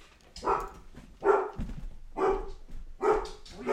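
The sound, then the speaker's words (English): A dog barks four times in a steady rhythm, each bark loud, with brief pauses between them and a low rumble of background noise underneath. “The dog's going nuts.”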